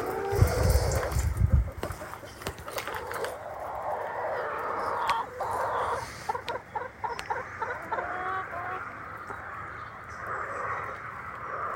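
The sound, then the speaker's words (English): Several chickens cluck and chatter steadily for the whole stretch, with a brief burst of low rumbling noise at the very start. “We still love you. Even though, come here, we've got new chickens.”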